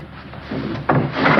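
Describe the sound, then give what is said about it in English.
A window slides open with a short scraping rumble, growing louder and grinding harder toward the end as the sash moves along its frame. “Keep the window shut.”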